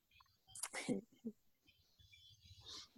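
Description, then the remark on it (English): Faint, high bird chirps sound in short bursts outdoors in Bali at sunset, while quiet voices murmur underneath. “And yet here we are, because I hear beautiful Bali birds.”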